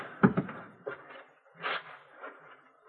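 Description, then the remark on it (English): A door is eased open and shut quietly as someone goes out the other door of a house, with a couple of soft knocks of the latch, a brief scraping creak, and a gentle closing thud, all hushed. “Now out the other door, but quietly this time.”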